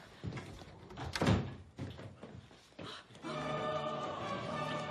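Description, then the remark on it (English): A door is pushed shut with a solid thud amid some shuffling and handling noise, followed by a steady tonal hum that fills the rest of the moment. “Not with the door open.”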